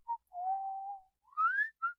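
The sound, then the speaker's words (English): A person whistles a short tune alone: a brief note, a long steady tone, then a rising phrase and a final short chirp, clear. “And the sound that reminds me the most of my grandfather is the sound of whistling.”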